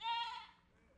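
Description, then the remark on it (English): A single goat bleats loudly, a wavering nasal cry that lasts about half a second before fading into quiet background noise. “If you jump off of that stage, you might die, goat.”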